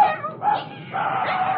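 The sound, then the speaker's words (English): A dog chasing a cat gives a few excited, high-pitched barks and yips in quick succession, fairly loud, with no talking. “That dog's chasing the cat right this way.”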